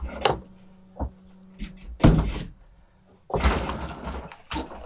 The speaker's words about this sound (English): I'm just going to shut the window to see if that keeps the noise down a bit, and then I'll get back to spirituality. Hold on.